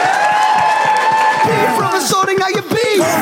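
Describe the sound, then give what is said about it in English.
Loud audience applause, a dense wash of clapping throughout, with whooping and cheering voices rising over it during the second half. “Big round of applause for Catherine and Helen one more time.”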